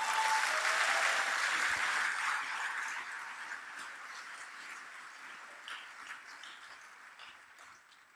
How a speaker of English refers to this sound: Come on, you can clap harder.